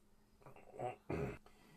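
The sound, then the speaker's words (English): Two short cat meows, the second one louder and more drawn out, with a brief pause between them and no talking. “And we start off where we left off, with the tiger's meow.”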